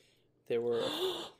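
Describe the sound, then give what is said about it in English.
A sudden excited gasp from a voice in the background, breathy and partly voiced with a rising tone, lasting about a second after a moment of near-silence, fairly loud. “They have people gasping in the background, excited.”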